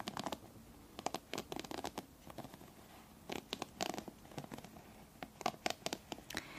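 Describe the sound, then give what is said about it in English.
Repeated brisk scratchy strokes of a brush with wooden bristles through hair, coming in quick bursts with short pauses between them, fairly quiet with no one speaking. “The bristles are also wooden.”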